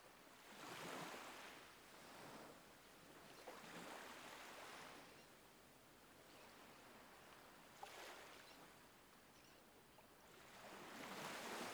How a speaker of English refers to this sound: Allow yourself to be carried by the sound of the waves. To a peaceful, calming place as you drift off to sleep.